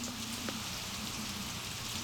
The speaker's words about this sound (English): What, seriously, the wind and rain is only like 2 seconds long there.